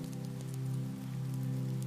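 Steady, continuous rain of a storm pattering on a surface outside a farmhouse in the Cotswolds, with a soft low droning hum running underneath throughout and no voices.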